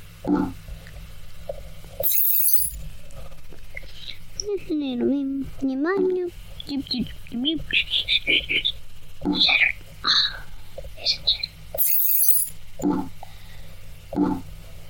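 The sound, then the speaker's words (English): Two bright crashes of glass lights being shattered in a game, one early and one near the end, each brief and sharp, with murmuring voices and soft game sounds filling the space between. “Wait, shatter the lights so we can see the math equation.”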